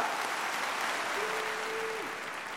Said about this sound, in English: You tornadoes deserve that round of applause.